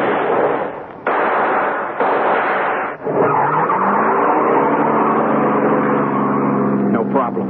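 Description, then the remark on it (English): A getaway car's engine roars to life as it is shoved into gear and takes off, accelerating hard, its pitch climbing steadily as it speeds away, loud, after a few seconds of harsh, noisy bursts. “I shoved that getaway car into gear and took off.”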